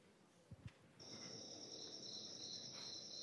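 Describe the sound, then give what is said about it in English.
Crickets chirp in a steady, high-pitched trill that starts after a couple of soft thumps and continues without pause over a faint background hum. “So crickets exhibit Arrhenius behavior. They will chirp faster as the temperature gets hotter.”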